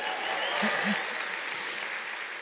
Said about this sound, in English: Yeah, we're just clapping everything today.